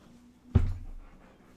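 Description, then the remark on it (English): A single dull thump of a female dog's head knocking against a table, with a short low rumble fading quickly into quiet background noise. “Dog's bashing her head on the table.”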